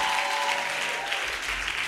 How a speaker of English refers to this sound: If you believe it, clap those hands and give God a praise.